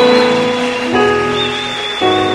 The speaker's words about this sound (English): If you believe you are free, clap your hands. Se você acredita que está livre, bate bem as palmas.